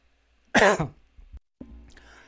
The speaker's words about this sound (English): Oh, I almost coughed and hit the button.